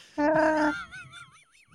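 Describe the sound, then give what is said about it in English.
A voice imitates screeching car tires: a loud, strained vocal tone that breaks into a thin, high-pitched squeal, warbling up and down before fading out. “Oh, yeah, it sounded like a screeching car, right? Like in a garage, an underground garage when you go on the concrete.”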